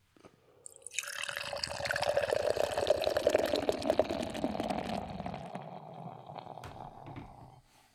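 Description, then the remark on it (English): Boulevard Brewing Company's Kvyak IPA, a 9% dry-hopped IPA with Norwegian Hornindal yeast, pours steadily into a glass for several seconds, a gurgling liquid rush with bubbly fizz that tapers off as the pour ends. No one speaks. “Let's get with the pour.”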